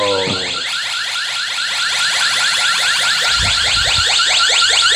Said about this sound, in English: So she opens the inside door to the garage, and the second she opens it, the entire house alarm goes off.